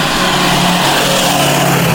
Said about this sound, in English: There's a car coming, so it's gonna be loud for a minute.